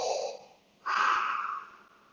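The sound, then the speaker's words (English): Two long, hissing breaths from a helmet's activated breathing module, with a mechanical, filtered quality: an airy inhale fading out, a brief pause, then a stronger rasping exhale, steady with no talking. “And the last thing they do is that they activate the breathing module that gives him the”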